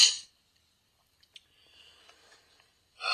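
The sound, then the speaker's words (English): Short, breathy sniffles, one at the start and another at the end, with faint, scattered soft rustling and clicks in the quiet gap between. No one speaks. “Wow, sniffles.”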